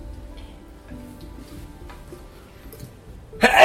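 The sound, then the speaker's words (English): A single sudden, forceful sneeze bursts out loudly near the end, after several seconds of quiet low background hum. “Bless you.”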